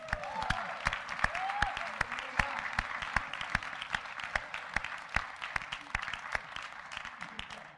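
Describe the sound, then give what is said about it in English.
A church audience bursts into steady applause after hearing the total the church gave to ministry above its budget, many hands clapping in a dense, continuous patter with sharper individual claps standing out, sustained at an even level for several seconds. “Now you can clap.”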